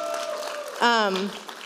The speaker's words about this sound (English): If you want to come on up to the stage, give her a round of applause.